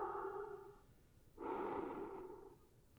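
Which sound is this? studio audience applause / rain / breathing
breathing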